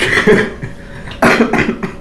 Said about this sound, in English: Got a bit of a cough there